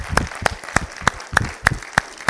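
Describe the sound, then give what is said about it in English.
A church audience claps for the Lord together in a steady, even rhythm, about eight sharp unison claps in quick succession, with a soft murmur of background noise and no talking. “Can we clap to the Lord?”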